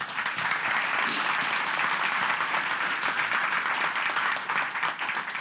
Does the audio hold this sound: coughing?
no